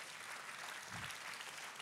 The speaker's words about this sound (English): Let's give God one more big round of applause.